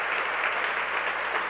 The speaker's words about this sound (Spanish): Si vamos a aplaudir, amigos, vamos a despertar al que está dormido.